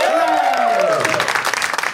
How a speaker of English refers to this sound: I give them a big round of applause above the stage.